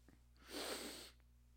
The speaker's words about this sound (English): Yeah. God, that feels weird. Yeah, it does. A sneeze incomplete is like top five worst feelings in the world.